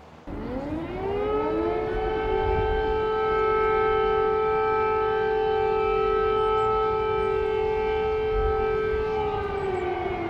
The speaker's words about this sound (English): Those are air raid sirens signalling that the Russians have fired a missile. Nobody knows immediately where that missile is aimed or where it will land. And that is why every time those sirens go off, the people of Kyiv feel tense